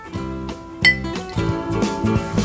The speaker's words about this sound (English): I'm pouring myself some new nog out of a new glass because I don't ever want to taste that again.